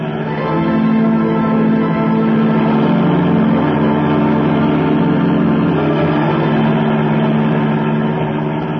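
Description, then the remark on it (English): A taxi engine roars loudly and steadily for the whole stretch as it speeds after another car, its pitch wavering slightly as the vehicle pushes hard, with no voices over it. “Okay, lady, but this is going to be one fast ride.”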